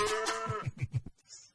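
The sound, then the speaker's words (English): A single cow moos, a loud drawn-out call that breaks into a few short, throaty pulses before trailing off. No one speaks. “experts have confirmed that cows have accents distinct to their herd. Can you tell where this comes from?”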